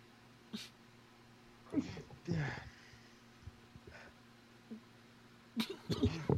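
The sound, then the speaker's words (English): A sharp sneeze bursts out, followed a few seconds later by more abrupt breathy vocal noises, with a low steady hum underneath. “Damn, why'd I have to sneeze?”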